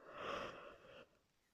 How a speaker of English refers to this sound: Sorry, I'm yawning. It is quite late.